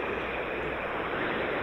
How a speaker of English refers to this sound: I hear the train coming.